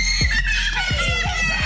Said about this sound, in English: Children screaming in terror at a daycare center as a grown-up wearing a scary mask yells in their faces.